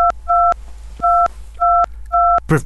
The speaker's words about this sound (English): Professor, I think your phone, the beeping, it keeps it kind of takes over your dialogue. We can hear your phone beep instead of you pressing any buttons.